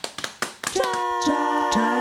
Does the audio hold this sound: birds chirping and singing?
no